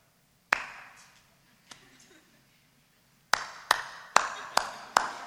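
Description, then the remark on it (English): Sparse, hesitant clapping from just a few hands in response to an announcement: one sharp clap, a faint second, a pause, then a brief uneven run of about six crisp claps before it dies out. “And this is the typical clap we got.”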